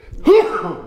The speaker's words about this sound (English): Bless you. Thank you. Excuse me. I'm gonna cut that out.